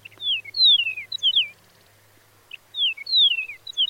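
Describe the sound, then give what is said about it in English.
A Chihuahuan meadowlark sings two clear phrases of sweet, slurred whistles separated by a brief pause, crisp over a faint low hum. “The research suggested that song differences could help prevent Chihuahuan meadowlarks from breeding with other species, and that eastern and western meadowlarks are more closely related to each other than they are to the Chihuahuan birds.”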